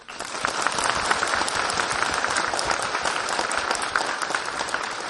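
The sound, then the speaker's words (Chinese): A large audience, asked to stand, claps steadily and loudly at a college of agricultural engineering to welcome Khenpo Sodargye, a dense, even roar of many hands that holds for several seconds without pause or any voices rising above it. “请大家起立，让我们用热烈的掌声欢迎尊敬的索達吉堪布。”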